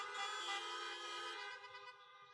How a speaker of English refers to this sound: Are you supposed to honk some horn? There you go.